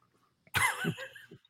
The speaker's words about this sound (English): Coughing right when you asked me.